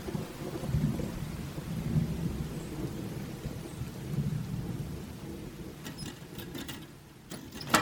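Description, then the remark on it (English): Steady rain falls on a yard with a deep, rumbling wash of thunder underneath, and toward the end sharper drips and patters spatter over the downpour. “One of those wild girls next door is standing out in the rain, arguing with her boyfriend.”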